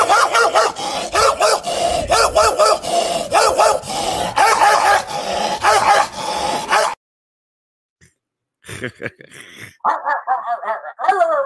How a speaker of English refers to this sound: Yeah, that's isn't that one, awesome? Yeah. Yeah, sounds like a dog.